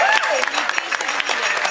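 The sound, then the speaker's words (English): A crowd gives a round of applause for Wes Streeting, dense, steady clapping that fills the short stretch, fairly loud, with a faint voice rising briefly at the start. “Round of applause for Wes Streeting.”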